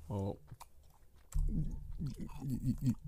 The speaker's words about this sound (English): Damn, nigga, you chewing hard as fuck, ain't it?